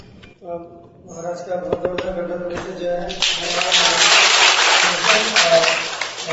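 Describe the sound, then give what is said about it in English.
Voices sound over a low murmur, then an audience breaks into clapping about halfway through, building into dense, steady applause that stays loud to the end. “Actually, you're clapping, but it wasn't supposed to be a performance.”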